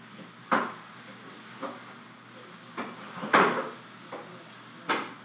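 Chicken sizzling in a frying pan, a steady hiss broken by several sharp clicks and scrapes of a utensil stirring against the pan.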